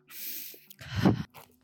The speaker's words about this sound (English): Didn't realize I was breathing directly into the mic. Damn, sorry.